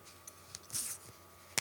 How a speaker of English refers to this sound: We're going to open this bottle too. It will have a less dramatic sound. Ready?